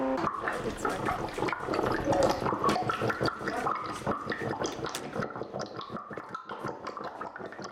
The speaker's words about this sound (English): and there's like water everywhere.